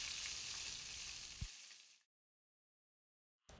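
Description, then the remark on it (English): Steady, dense sizzling of battered fish nuggets frying in hot vegetable oil on the stove, loud, with a soft thump partway through, then it cuts to silence before the sizzle briefly returns. “Batter each nugget generously and carefully fry them on the stove using vegetable oil.”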